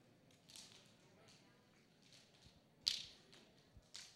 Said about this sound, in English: Why, some of you like to slap hard. Whoa. I'm hearing some hard old slaps. No patty caking in this church.